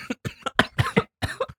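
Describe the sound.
A rapid string of forced, exaggerated fake coughs from one person, about seven sharp bursts in quick succession over under two seconds, with no talking.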